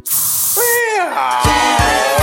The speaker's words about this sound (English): When you just can't, there's Canaflip, a harmless spray that makes your dog act like a cat for some reason.